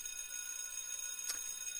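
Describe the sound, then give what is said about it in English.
A hand bell rings on with a steady, high metallic shimmer of overlapping tones, fairly quiet, with a single soft clink partway through and no voices. “So, take into consideration, I've just rung the bell.”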